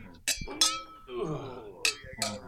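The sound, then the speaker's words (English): Glasses, one holding sparkling soda, clink together in a toast: four bright, ringing taps at irregular intervals, fairly loud, with people chattering between the clinks. “Cheers, by the way, everybody. Oh, yeah, cheers. Cheers, very nice. Cheers, ding.”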